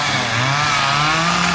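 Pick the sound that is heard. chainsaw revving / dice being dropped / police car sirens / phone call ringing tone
chainsaw revving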